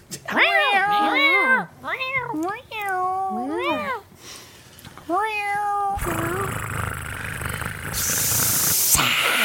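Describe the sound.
Human voices imitate cats with a string of drawn-out, wavering meows, several overlapping, before a loud steady hiss of noise takes over for the last few seconds.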